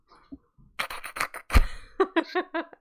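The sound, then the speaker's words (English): A person imitates a cat's chirping: a run of breathy, clicky bursts and one sharp pop, then four or five quick, short trilled chirps in a bouncy rhythm. “What do they sound like when they're talking to each other? They like chirp.”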